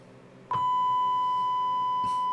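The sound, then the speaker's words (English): A loud censor bleep cuts in after a brief quiet moment and holds as one steady, pure electronic tone right to the end, with no talking. “There's just gonna be random bleeps in the episode.”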